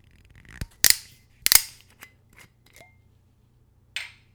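A metal screw cap is twisted off a spirits bottle: two sharp, loud cracks as the seal breaks, a few faint ticks of turning, then a short hissy scrape as the cap comes free.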